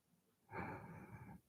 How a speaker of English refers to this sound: Oh, snap. I was breathing on mic. My bad.